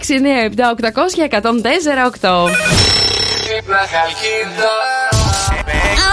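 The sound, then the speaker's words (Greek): A voice speaks briefly, then a telephone rings loudly and steadily for a couple of seconds as a prank wake-up call is placed, before a burst of noisy sound cuts in. “Σήμερα όσοι γιορτάζουν εδώ θα τους πάρουμε τηλέφωνο.”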